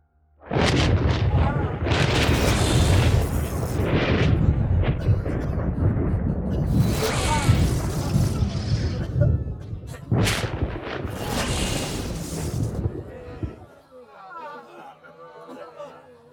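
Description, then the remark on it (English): Loud, thunderous crackling bolts of sizzling sorcerous energy rain from the skies and slam down onto soldiers in a dense, roaring barrage, with several sharper blasts bursting through before the noise drops to a fainter rumble near the end. “It cracked with a thunderous sound as it slammed into the bodies of the Deva soldiers.”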